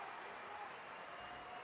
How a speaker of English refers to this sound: Juan Toscano-Anderson gets a nice round of applause. He's back out there.